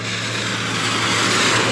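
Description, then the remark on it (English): A car engine being revved in a parking lot roars loudly and steadily, holding a constant pitch with a low, droning hum underneath and a harsh, noisy rasp on top. No one speaks. “Revving their motor over here in the parking lot and it sounds like shit.”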